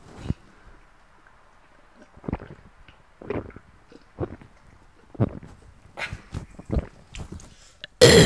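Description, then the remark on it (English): Gulping as someone drinks beer, a loose series of wet swallows and throaty glugs at irregular intervals, with quiet gaps between and a sudden loud clatter at the very end. “That's drinking some beer.”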